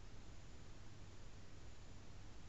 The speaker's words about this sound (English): Can you hear anything? I can just hear the hum of the computer. Other than that, it's very quiet.